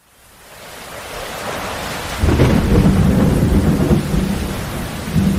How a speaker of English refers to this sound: Editing Ryan, can you drop this in with like maybe some thundering in the background?